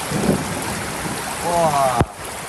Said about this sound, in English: Thunder can be heard in the distance against a heavy downpour. It is an especially stormy night here in Kaohsiung. It's almost as if a typhoon had arrived.